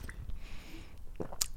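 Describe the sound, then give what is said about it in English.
Someone quietly sips water, soft wet mouth sounds followed by a couple of brief clicks and a swallow near the end, with no talking. “Oh, that water was dusty.”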